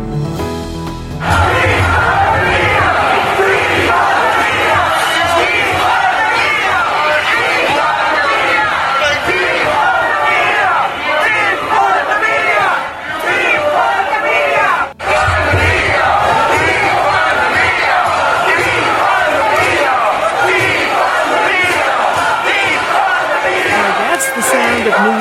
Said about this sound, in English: They were in a plaza right in front of the New York Times yelling, "We want freedom," and then defund the media. And I looked at the protests, and they were, you know, they were every color of people you could imagine.